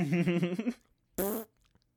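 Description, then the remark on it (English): Two short, buzzy fart noises made with a hand, the first a rattling burst of about three-quarters of a second, then a brief pause and a shorter, sharper second one, both fairly loud. “It's not much of a fart noise, but it's a fart noise with my hand.”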